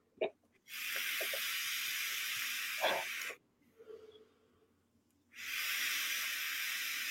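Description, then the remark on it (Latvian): Two long, steady hissing bursts of vapor exhaled from a vape during chain vaping, the first lasting a few seconds, then a short quiet gap before the second; faint clicks come just before. “Ar ekur kameru jau fokus nevar noķert no tiem tvaikiem.”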